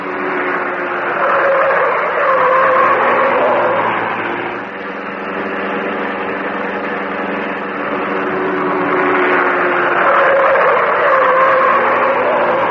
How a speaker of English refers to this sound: Like a glittering black comet in the darkness, the car of the Green Hornet whipped through the city streets.